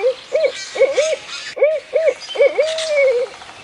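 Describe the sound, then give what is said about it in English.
A barred owl calls a rhythmic run of clear, resonant hoots in two phrases, the final note stretched into a long descending drawl, with no one speaking. “To signal it was okay to slip away and join her, she would hoot like a barred owl.”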